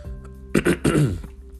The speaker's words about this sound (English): Continue to keep clearing my throat.